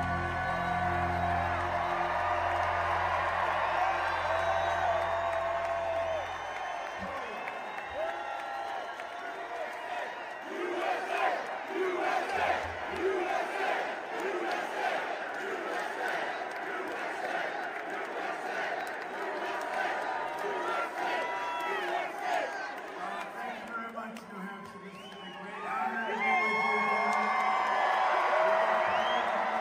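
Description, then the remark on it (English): A large, full-house crowd at a Trump rally roars and cheers continuously as Trump enters, with rhythmic chants of "USA" rising through the din, dense and loud throughout, swelling again near the end; an announcer-like voice briefly cuts through. “Anyway, Trump entering his rally, you know, like usual, full house and enthusiastic crowd and chants of USA.”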